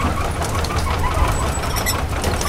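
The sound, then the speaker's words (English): The engine of a rescue boat sent from a ship drones steadily with a deep, throbbing low rumble under broad, hissing noise, holding an even loudness throughout with no voices. “They're sending a rescue boat.”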